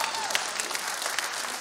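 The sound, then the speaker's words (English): A church audience applauds as a prayer begins, with dense, steady clapping that holds an even level throughout and has a few slightly sharper claps standing out. “God, yeah, we can clap right there.”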